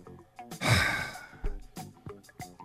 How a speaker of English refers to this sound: What's all that breathing?